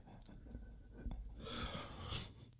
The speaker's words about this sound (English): I had a whole yawn there, bro. You did. Like, I'm you did. You had a whole conversational yawn.